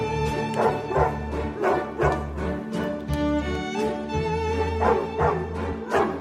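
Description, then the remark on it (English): Dogs bark repeatedly in a steady, rhythmic pattern over the Blue Danube Ballet Suite, loud orchestral music with sustained strings, the barks evenly spaced like a beat, no talking; from a video Henry Cavill posted on Instagram. “The Blue Danube Ballet Suite with dogs barking.”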